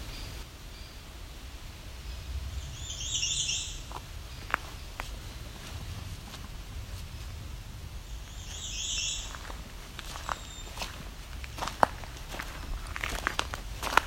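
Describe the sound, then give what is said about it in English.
A hairy woodpecker gives two sharp, piercing high calls several seconds apart, over a background of crunching footsteps and faint outdoor ambience. “There's a hairy woodpecker coming up. That piercing call.”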